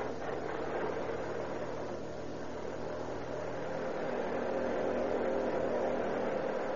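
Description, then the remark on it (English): The engine of a parked police car on a pitch-black lane along the main road from San Jose to Oakland runs with a steady, droning rumble that holds at an even level throughout, with no distinct starting burst or changes in pace. “Turn over your motor.”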